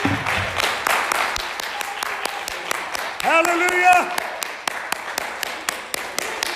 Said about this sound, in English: And we ought to praise Him. I said we ought to praise Him tonight. Oh, why don't somebody just clap your hands to Jesus right now?